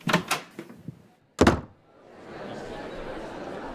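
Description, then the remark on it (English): The door of a school principal's office is flung open by Hobson: a few quick rattles and knocks, then one loud, sharp bang, followed by a steady, hissy background murmur. “Hobson led Kirby back into the school and burst into the principal's office.”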